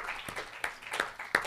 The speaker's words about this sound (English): Now before you sit down, would you give Him a good hand clap of praise? Amen.